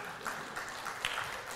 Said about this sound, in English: You can clap for yourself.